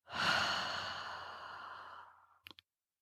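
A long, steady breath exhaled through the mouth during a breathing exercise, a soft airy rush lasting about two seconds that slowly fades out, followed by two quick, short sniffs.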